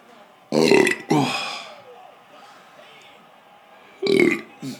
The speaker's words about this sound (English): The burps are going to come more and more.